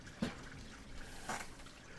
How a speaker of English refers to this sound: We are recording next to a Norwegian stream. Yes. On fresh, this episode. Cool fresh water. Imported fresh from Norway.